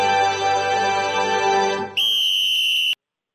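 A single loud, shrill referee whistle blast, held for about a second and cut off sharply, following a dense droning wash of sound.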